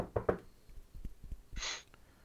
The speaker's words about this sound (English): So, yeah. I gotta go lower to knock on wood. Because my desk is down here, not up here.